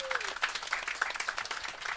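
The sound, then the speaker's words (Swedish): A stand-up show audience applauds a guest, a dense wash of overlapping claps with a bright, crackling texture that holds at an even level throughout. “En applåd.”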